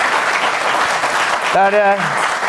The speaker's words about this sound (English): They're applauding my next question.